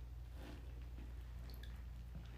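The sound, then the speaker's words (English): Quiet bath water drips and gently sloshes, a few soft wet plinks scattered over a low steady hum, with no one speaking. “The bath water is getting cold.”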